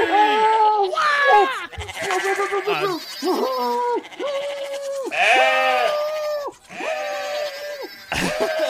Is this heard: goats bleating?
yes